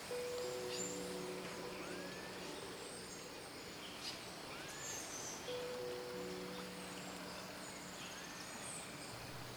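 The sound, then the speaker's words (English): Two long, low droning calls of howler monkeys rise and fade far off, over a soft wash of forest ambience with faint bird chirps and insect hum. “bright yellow birds fly around the hut, and in the distance, you can again hear the howler monkeys.”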